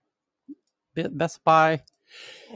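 A single sneeze: a couple of sharp catching breaths, then a loud voiced burst trailing into a soft, hissy exhale, with no talking around it.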